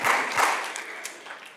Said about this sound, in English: You can clap. You can clap. One guy over here wants to clap. So let's do it.